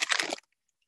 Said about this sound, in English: I cut the top off and I'm going to pour the cake mix in. Into here. Here, I'll put the phone so you can hear it. It's very quiet. I love pouring cake mix. It's like pouring, it's like snow, powdered snow.